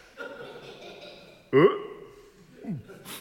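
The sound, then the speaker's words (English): A loud, comical fart bursts out abruptly, followed moments later by a shorter, descending squeaky one, over a faint background murmur. “They make my tummy go all funny, and it gives me the bottom burps.”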